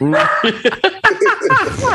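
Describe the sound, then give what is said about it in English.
Two dogs named Andy Dalton and Joe Burrow bark in a quick run of short, yappy barks and whines, fairly loud, with a person's voice mixed in. “The dogs are like, no triple reverses in here.”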